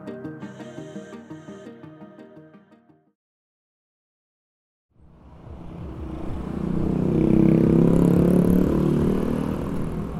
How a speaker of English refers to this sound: Even if you haven't seen it for yourself, our correspondents on the show keep pointing out just how bad traffic can be in many Asian cities. It's not just cars. In a lot of places, it's also mopeds and motorbikes and rickshaws and tuk-tuks.